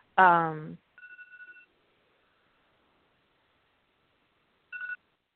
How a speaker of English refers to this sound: What was that? What is what? I heard a little dingling, ringing sound in the background. That was my alarm. Okay. I was like, am I imagining things? It was my alarm telling me the dealer was available